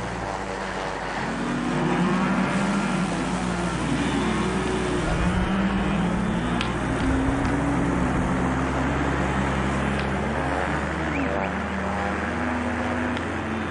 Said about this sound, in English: Here, choppers buzz overhead on a daily basis.